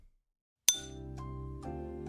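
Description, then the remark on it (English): Glasses clink together in a toast with one sharp strike, followed by a sustained bright ringing tone and a couple of softer taps as it fades, with no talking. “Let's sip it.”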